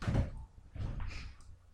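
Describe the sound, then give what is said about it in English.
A firework explodes outside in the neighborhood in two deep, muffled booms about half a second apart. The first is the heavier thump, and the second rolls on a little longer before fading out. “It was a good firework.”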